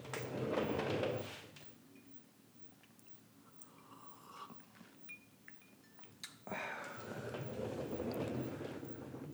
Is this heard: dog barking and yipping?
no